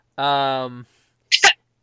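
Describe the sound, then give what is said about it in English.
A person vocalizes a drawn-out tone, then after a short pause lets out a single sharp, breathy cough burst, fairly loud, sounding deliberately performed rather than natural. “Cough. Just cough.”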